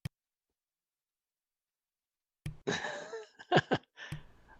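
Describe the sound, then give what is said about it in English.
After a stretch of silence, a strained, voiced breath builds into two quick, sharp sneezes, followed by a short noisy exhale. No one speaks. “I was sneezing.”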